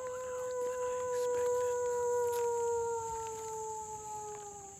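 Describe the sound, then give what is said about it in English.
A guide imitates a wolf with one long, steady howl that slowly slides lower in pitch for about five seconds, on a road in quiet woods at the Endangered Wolf Center, trying to draw the wolves out, with a constant high-pitched hum in the background. “The guides kept howling back and forth, trying to draw the wolves out.”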